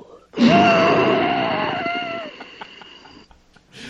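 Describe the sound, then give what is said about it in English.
Someone imitates heavy, asthmatic breathing: one long, loud, wheezy rasp with a thin whistling tone, lasting about three seconds before trailing off. “With the asthma. Breathing.”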